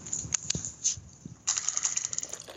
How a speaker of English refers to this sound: Let's make a wits investigation roll, which is going to be 8 dice for you because you are min-maxed to the combat. All right. Let's get the 4 dice I can read and roll them twice.